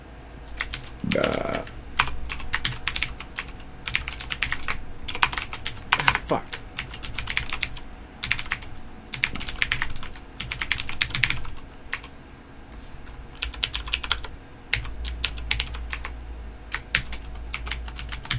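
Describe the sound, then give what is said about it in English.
Rapid, irregular clatter of keys on a computer keyboard, fairly loud, continuing in bursts with brief pauses and a faint low rumble in the background, as someone types in a 10-digit mobile phone number to register a phone account online. “I have, by typing it in and then clicking next.”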